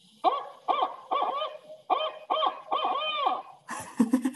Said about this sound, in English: The barred owl, he says, who cooks for you? Who cooks for you all?